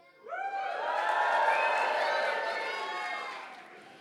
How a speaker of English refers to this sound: Okay. Well, give a cheer.